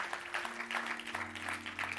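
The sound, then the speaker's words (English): A church crowd breaks into sustained applause for the mothers in the room, a dense wash of many hands clapping steadily at moderate loudness, with a low electrical hum running underneath. “Can we clap our hands for all the moms in the room?”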